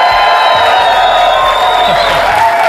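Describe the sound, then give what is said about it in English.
A large crowd at Summit 2017 roars and cheers continuously in a raucous standing ovation as Coach Lou Holtz walks off the stage, a loud, dense wash of voices and whoops with applause mixed in, sustained without a break. “We have a great crowd here watching, and Coach Lou Holtz just walked off the stage to a raucous standing ovation, an unbelievable talk to these leaders.”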